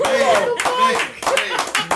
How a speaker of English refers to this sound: Come on, y'all clap it up for that. Come on.